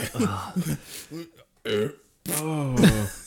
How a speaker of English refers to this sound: Got a burping in for it. I'm sorry. I got gas coming out everywhere.